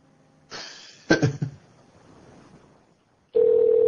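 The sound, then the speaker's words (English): A telephone rings with no answer: after a burst of clattering noise and a short hush, a loud, steady electronic ring tone starts abruptly and holds to the end. “she doesn't want to fucking pick up, so we'll call him back.”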